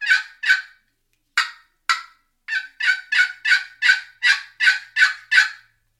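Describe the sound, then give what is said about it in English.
A turkey box call is worked in raspy yelps, toned down as far as the caller ever tones it: two quick notes, a pause, two spaced notes, then a steady run of about nine yelps, moderately loud with no talking. “But let's just say I ripped it and a bird gobbled and he really likes the sound of this box call. I'll tone it down and this is about as far as I'll ever tone it down.”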